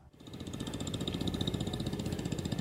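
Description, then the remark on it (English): A 1957 Gold Ferguson 35 tractor from Quebec, Canada, shown by the Ferguson Enthusiasts of North America, idles with a steady, rhythmic chugging of evenly spaced low thumps and a faint metallic rattle, running on its own without any voices. “The Ferguson enthusiasts of North America show off a 1957 Gold 35.”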